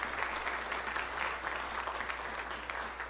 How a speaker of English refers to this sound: God's good today. Can we give Jesus a hand clap of praise? Amen.